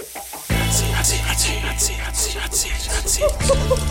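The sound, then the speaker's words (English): A loud, steady sizzling hiss bursts in after a brief quiet start, crackling and popping continuously over a low droning hum, with the texture shifting slightly near the end. “There's that sizzling sound.”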